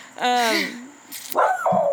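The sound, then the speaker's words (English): A dog barks twice: a loud, drawn-out yelping bark that drops in pitch, then after a short pause a rougher, noisier bark. “Or her dog's gonna get you.”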